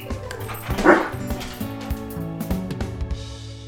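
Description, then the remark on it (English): An excited dog named Pepper barks and yips on being asked to go for a walk, a quick burst of high, sharp calls, loudest near the start, then trailing into softer whimpering yelps. “Hey, Pepper, want to go for a walk?”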